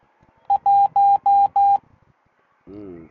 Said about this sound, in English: That means the battery is getting low on the kitty cam.